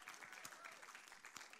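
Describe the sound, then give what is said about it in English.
A church audience applauding one another during a service, a dense, steady patter of many hands that stays even throughout the short burst, with no one speaking over it. “So you can applaud one another, I guess.”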